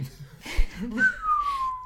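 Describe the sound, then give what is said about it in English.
A person whistles one long tone that glides slowly downward in pitch, imitating a spacey sci-fi sound. Brief murmuring and breathy noise come just before it. “Can someone give me some space sounds?”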